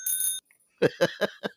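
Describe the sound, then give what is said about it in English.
A bicycle bell, rung by someone riding the bicycle, rings twice in quick succession, bright, followed after a short pause by four short bursts of laughter. “Oh, yeah, he's just, you know, on the bicycle, you know, ringing the bell.”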